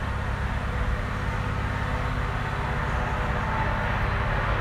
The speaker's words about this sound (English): Sorry, there's a truck. Coming up the hill, so I don't know that it'll get quieter.